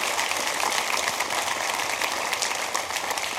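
A church audience claps their hands together in praise to God, a dense, steady wash of claps that holds at an even loudness for a few seconds, with no voices standing out.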